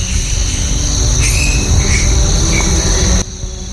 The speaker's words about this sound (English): The cicadas and crickets are kind of...